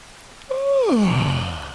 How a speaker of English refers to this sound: Oh, no, you're yawning. I have to yawn. It's like it's contagious.